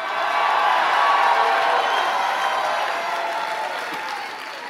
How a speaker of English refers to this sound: Come on, if that sounds like you, jump up on your feet, take 30 seconds, give the Lord the biggest hand clap, biggest shout. Come on, Tennessee, let me hear you shout.